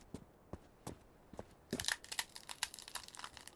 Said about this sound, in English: What was that? I stepped on something that made a loud crunch sound. I lifted my foot, and underneath there was a clump of twigs tied together with string.